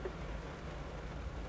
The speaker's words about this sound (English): Rain looks like it's letting up again. Kind of don't want to get out of the car yet, though. Not that eager to do that. Still, it's not raining as hard as it was.